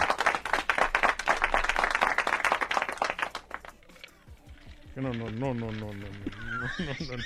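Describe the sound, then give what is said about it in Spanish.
A burst of applause with dense, rapid clapping for about three and a half seconds, fading out, followed by a high, wavering whinny-like cry. “Ah, espérate, un aplauso.”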